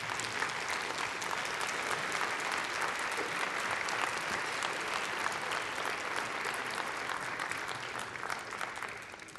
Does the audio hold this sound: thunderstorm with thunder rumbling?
no